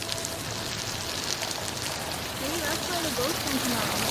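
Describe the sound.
Heavy rain pours down in a steady, dense hiss, heard from underneath a bridge, filling the whole recording, with a faint voice murmuring underneath near the end.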